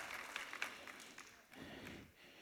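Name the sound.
audience clapping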